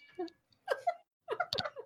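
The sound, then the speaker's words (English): A teething kitten named Bitey, shut in the kitchen two rooms over, yowls in three drawn-out, insistent cries with short gaps between them, sounding somewhat muffled. No one talks. “I don't know if you can hear him yelling. Wow, he's so loud.”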